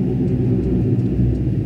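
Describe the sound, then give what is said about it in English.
A deep, steady engine drone from an old World War II propeller plane flying overhead, a loud continuous low rumble that holds without a break, with no talking over it. “We got World War II flying. Yeah, that is an right old now. Plane.”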